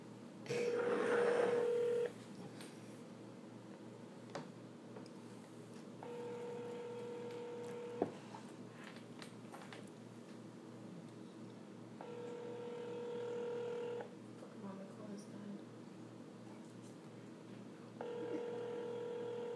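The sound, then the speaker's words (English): A burst of phone dialing tones, then an outgoing call to a woman ringing: steady ringback tones repeat about every six seconds over a low background hum, with no one talking; the call goes to voicemail. “She's busy. It's a phone call.”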